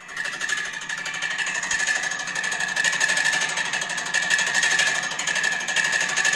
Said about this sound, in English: That's just your standard air conditioner in a hotel room. Just clanging and banging. Ended up having to call the people, and like, my room's getting hotter, so I turn it on and it's doing that.